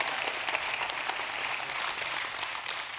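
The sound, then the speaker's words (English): Steady applause from a large audience, a dense wash of many hands clapping at once, sustained and fairly loud for a few seconds with no voices. “That was a good time to clap.”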